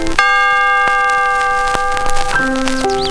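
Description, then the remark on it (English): A bright electronic chime rings out with sustained, layered tones, then shifts to a lower pair of notes near the end, clear with no talking over it; it is the page-turn signal of the read-along storybook Strawberry Shortcake's Day in the Country. “Remember, when you hear the chime, turn the page.”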